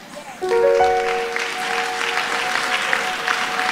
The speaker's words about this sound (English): You know, when you don't want money to come to you, you clap like that. Clap like you are a child of God and that money does not control you. You control it.